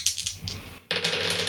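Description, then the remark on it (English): Dice clatter and rattle across a hard surface in a quick burst of bright clicks, a brief pause, then a louder, denser wave of tumbling taps that continues to the end. The dice are rolled for the character Aranis's turn in a tabletop role-playing game. “So, let's roll for Aranis.”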